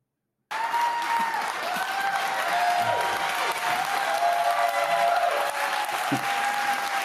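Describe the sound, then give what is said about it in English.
Sustained audience applause, a dense, steady wash of many hands clapping at even loudness for several seconds, with faint crowd murmur and a few whoops mixed in. “That's a long clap.”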